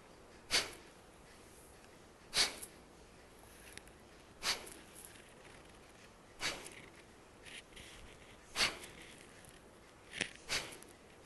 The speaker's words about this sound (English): Fire breath, Kapalbhati, start. Choose your own ratio, choose your own speed. Make sure you get the technique right. You're blowing your nose out by pulling your tummy in.